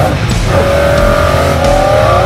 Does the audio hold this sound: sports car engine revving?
yes